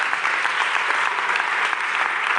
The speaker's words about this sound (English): Man, it was remarkable seeing all the guys and the ladies up here at the graduation. Weren't they awesome? Yeah, that's just my way of getting you to applaud. Okay, let's give him a round of applause. Yeah.